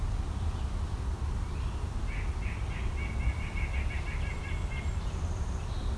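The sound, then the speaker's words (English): A white-breasted nuthatch gives a quick run of short, nasal, mid-pitched notes, fairly soft, over a constant low rumble of background noise. No one speaks. “And a white-breasted nuthatch.”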